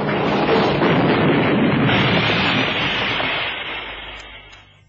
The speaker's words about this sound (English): They're turning. Brakes won't hold. Get down, kid. We're sliding sideways. Get on the dashboard.